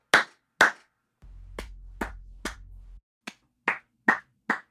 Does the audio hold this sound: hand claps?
yes